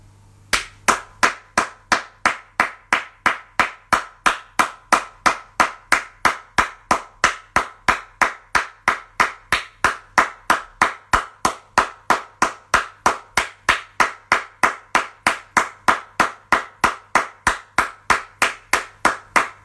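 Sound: rhythmic hand clapping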